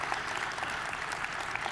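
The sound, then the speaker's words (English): An audience applauds together, a dense, steady wash of many hands clapping at once, sustained evenly throughout with no pauses or voices rising above it. “You can clap for that.”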